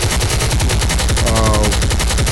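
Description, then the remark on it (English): A loud, sustained burst of automatic gunfire, rapid shots cracking in a steady, fast rhythm for the whole couple of seconds without letting up. “I had to let the motherfucker, let that chopper ring last night.”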